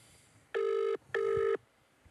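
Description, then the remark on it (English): A telephone ringing tone sounds as two quick, buzzy bursts in a row, a classic double ring, clear and fairly loud over a faint hiss, with no voices, before an answering machine picks up. “We can't get to the phone at the moment, and so please leave your name.”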